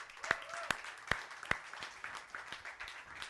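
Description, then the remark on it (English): A church audience gives God a hand clap of praise as the band comes up, with a few sharp, evenly spaced louder claps standing out early before blending into a steady, dense patter of hand clapping at moderate volume. “Would you give God a hand clap of praise as you do?”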